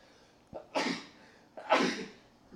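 Two sneezes in quick succession, each with a short sharp intake followed by a loud, breathy burst, with no talking in between.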